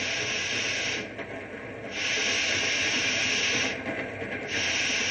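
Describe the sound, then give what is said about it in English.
Loud, steady hiss of escaping steam from a steam train as it is brought to a stop, dipping briefly twice, with a low mechanical rumble beneath and no voices. “You ain't gonna stop this here train, are you? Got to, right away.”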